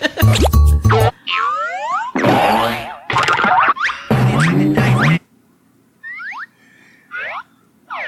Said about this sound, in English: It's funny because I don't know what video's playing the sound. I like it because it's old shitty Hanna-Barbera fucking, yeah. Fucking sound effects. I love the balloon sound effects.